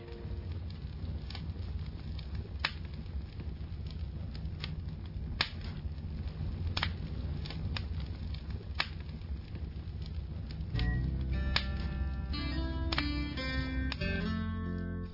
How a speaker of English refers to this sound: Our warm campfire is always the gathering spot, no matter the weather. Tall tales and life's tough spots get worked out here.